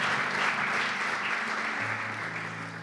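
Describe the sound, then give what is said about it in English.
Sustained applause from a standing worship audience, a round of applause for Clint to thank him for coming; a dense steady wash of many hands clapping at even loudness, with a low humming tone running underneath and no voices heard. “Yes, go ahead and stand, and just let's give Clint a round of applause.”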